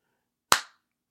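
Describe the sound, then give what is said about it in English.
A single sharp hand clap rings out alone, crisp, with a quick bright attack and a short decaying tail into silence. “One more clap. Right, one more. This is the real clap”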